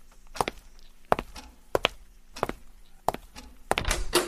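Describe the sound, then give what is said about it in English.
Six or so steady footsteps cross a hard floor at an unhurried pace, followed by a louder, rattling clatter as a door is pulled open. “Would you get the door while I fix us something to drink?”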